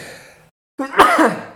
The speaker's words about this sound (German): Ich muss ganz kurz niesen, warte.